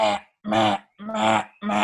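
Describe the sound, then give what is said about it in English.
A person imitates a crow's call with four loud, harsh, rasping caws in a steady rhythm, each about half a second long, with short gaps between them. “Sometimes there's like a crow or something that literally goes.”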